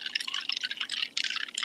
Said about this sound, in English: It sounds so good when those bubbles hit the ice. Keep going. I'll wait.